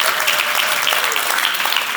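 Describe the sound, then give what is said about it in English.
A church audience claps together to celebrate the church's 9-year anniversary, a dense, steady wash of applause, the many overlapping hand claps blending into a bright, sustained roar that holds at an even level for the full two seconds. “You can clap for that.”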